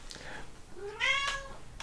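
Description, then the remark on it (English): A single cat meow, clear, rising in pitch and then falling away, with a faint bit of background noise around it. “Kitty wants to call you out.”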